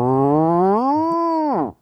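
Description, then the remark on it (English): A voice imitates the sound of their own stomach digesting food after eating, a single low, moaning groan that slowly rises in pitch, holds steady, then drops off abruptly. It is loud and sustained, with no other sounds. “There is something where if I eat, you can kind of hear me digesting a little bit.”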